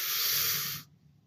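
A single steady airy draw, someone pulling in a smooth hit of smoke for just under a second before it cuts off into near silence. No talking.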